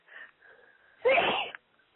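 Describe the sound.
A single loud fake sneeze performed by a woman: a quiet, breathy wind-up followed by one sharp, forceful burst that cuts off abruptly. No speech.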